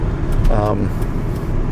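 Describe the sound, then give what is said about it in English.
Steady low rumble of a car being driven through traffic that a fire truck has partly stopped, continuous, with a brief muffled voice-like tone partway through. “I'm driving and there's a fire truck. It's got some of the traffic stopped.”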